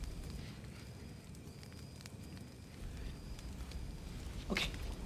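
A fire crackles steadily over a low, rumbling roar, with scattered sharp pops and snaps breaking through now and then, one louder crack near the end. No voices.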